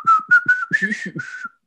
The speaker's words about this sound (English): did you hear that? I heard the whistle. Is that supposed to be a song? Like the Old Spice?